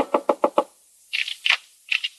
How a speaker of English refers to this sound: We find Anne frantically knocking on Jeff's door.